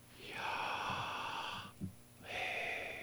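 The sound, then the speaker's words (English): A slow, breathy inhale followed by a long airy exhale, fairly loud, with a soft catch between them, voicing Yahweh, the Hebrew word for God; no talking, just the hushed rush of breath in and out. “Well, the Hebrew word for God, which means that which cannot be defined, is Yahweh, which is, when said correctly, is the sound of breathing.”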